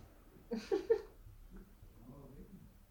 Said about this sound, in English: I think she's trying to cough up some hairs.